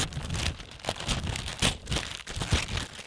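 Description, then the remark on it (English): Wrapping paper is ripped off a present being unwrapped, crinkling in a continuous rustle broken by several sharp tearing bursts over a few seconds, with no voices. “So are you going to unwrap my present right now?”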